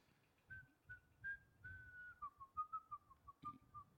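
A person whistles a short, wavering tune, with clear separate notes drifting up and down in a loose melody, over faint low background rumble and no talking.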